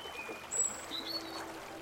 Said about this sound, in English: Near the church, the river seems quiet. Gentle, even. There's some stepping stones across the river.